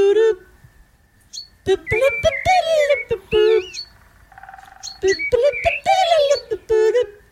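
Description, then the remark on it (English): A pet bird whistles a short tune resembling an old television theme song, in bright, warbling phrases with quick chirpy notes and brief pauses, fairly loud, with a faint steady tone underneath in the middle. “I'm going to stop the bird right there. Hold on, bird. That sounds eerily similar to an old television theme song.”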